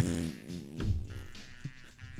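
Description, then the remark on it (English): A voice makes a drawn-out, buzzy, wobbling fart imitation, fairly loud, depicting someone crop dusting farts while walking through office cubicles, with a few sputtering bursts toward the end and no words spoken. “Barb in the office is just walking through the cubicles, crop dusting her sexy farts.”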